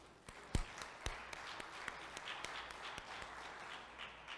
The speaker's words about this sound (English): So give yourself a hand clap of praise.